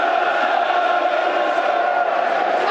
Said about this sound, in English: Crowd getting behind the game.